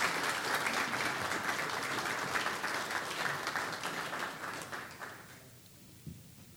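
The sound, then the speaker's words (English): Audience applause, a dense steady patter of many hands clapping that holds for about five seconds, then thins and fades out, leaving a faint trailing clap or two. “Let's give these guys a hand of applause.”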